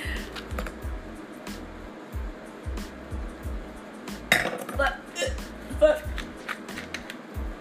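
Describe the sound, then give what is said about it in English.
A cap is put back on a glass liquor bottle during a round of shots: a couple of short clinks and scrapes, heard over a steady thumping beat and faint background voices. “I told you stop putting the top on that shit.”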